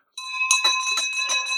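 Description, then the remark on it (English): A bright, high-pitched bell rings continuously, its metallic tone sustained with rapid repeated strikes pulsing through it, loud and alone without any talking. “I want you to put a huge smile on your face as you hear this, because this is something that I am ringing for you.”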